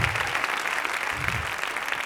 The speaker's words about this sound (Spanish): Un aplauso para Jonathan.